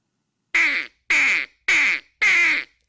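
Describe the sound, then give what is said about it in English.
Four short, loud quacks blown on a duck call, evenly spaced about half a second apart, each a bright, reedy honk with no talking. “Yeah, one quack. Just one quack.”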